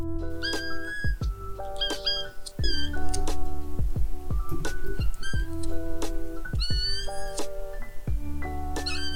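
A female kitten named Pepper meows over and over in quick succession, her high, thin cries fairly loud, with a low steady hum underneath and no talking.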